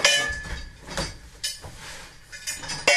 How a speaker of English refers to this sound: In an aluminium prefab in the playground at St. Mary's School for Deaf Girls in Cabra, you can't move for the clatter of junk that spills out of bags and across the floor. It's a cacophony of tin and steel, old washpipes, washboards, bicycle wheels,